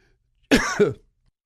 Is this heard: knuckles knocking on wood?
no